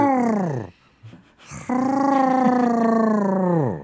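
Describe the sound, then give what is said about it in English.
A person imitates a turkey gobble with their voice: a short, strong call, a brief pause, then a longer sustained warbling call that slides down in pitch at the end. “Is that a turkey? It sounds like you're trying to start a car.”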